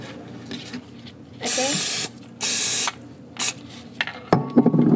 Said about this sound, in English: Every time you make a waffle, you have to spray it with the cooking spray, okay?